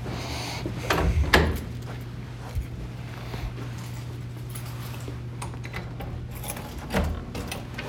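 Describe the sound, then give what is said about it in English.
A door is moved, with a scraping, clunky burst early on and a couple of softer knocks later, all over a steady low electrical hum. “Where's the door stop?”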